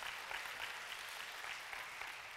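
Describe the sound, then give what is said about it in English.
A crowd breaks into steady applause, a dense wash of many hands clapping at a fairly even level throughout, with no voices rising above it. “Come on, that's worth an applause.”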